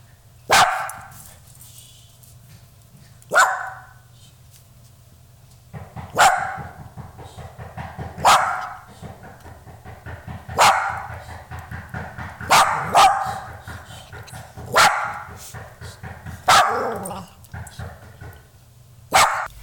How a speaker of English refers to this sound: I mean, now let's see what your friendly neighborhood dog would like to say about this matter.